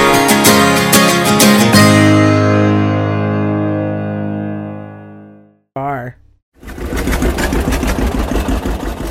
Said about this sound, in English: older and newer tractor models competed to pull a large drag, also known as a sled